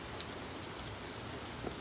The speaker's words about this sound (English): a screened in porch area. That's just, it's just screen and a roof. We got a couch, we got a little table, and I'm sitting in like a lawn chair out here, surrounded by the pouring rain. It's absolutely amazing.